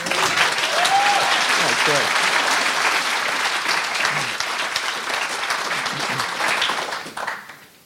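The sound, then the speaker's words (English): Sustained, loud audience applause with dense clapping and a few whoops or cheers mixed in, holding steady before tapering off at the end. “I'm as a performer, I know when the applause has happened, that's it, you move on.”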